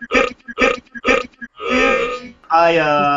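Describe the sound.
A man belches loudly during an interview while someone else is talking: three quick choppy bursts, then a long raspy belch that rolls into a deep, drawn-out voiced burp.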